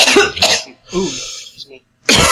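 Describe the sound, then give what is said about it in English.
Several loud, harsh coughs in quick succession, with a raspy throat-clearing sound in between. “Making me cough too.”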